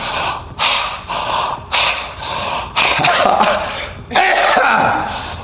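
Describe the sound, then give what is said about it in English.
Loud, exaggerated breathing in several long, noisy breaths, turning into rougher, harsher coughing sounds toward the end, with no other sounds around it. “Wait, did he call himself breathing and he started coughing?”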